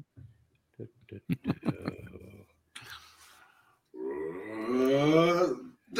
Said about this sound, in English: Do, clicking your screen.